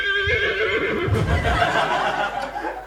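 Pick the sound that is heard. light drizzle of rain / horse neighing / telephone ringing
horse neighing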